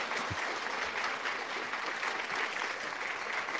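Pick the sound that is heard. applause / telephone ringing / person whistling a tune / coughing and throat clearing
applause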